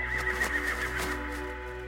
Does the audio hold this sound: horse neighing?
yes